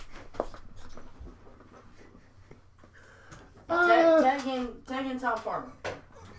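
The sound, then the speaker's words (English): A dog whines and whimpers in a burst of rising, wavering cries lasting about two seconds, after several seconds of quiet rustling and light panting-like breaths. “because I'm about to abuse my dog. Don't call PETA.”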